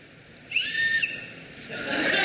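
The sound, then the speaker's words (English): A whistle gives one short, thin, high tone lasting about half a second, followed by a stretch of breathy, hissing blowing that grows louder toward the end without a clear tone. “But I'm going to go ahead and start this talk as soon as the whistle blows.”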